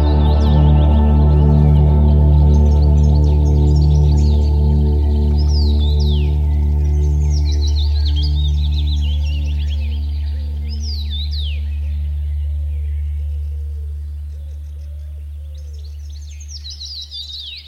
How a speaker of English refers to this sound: His ears twitched as the birds sang.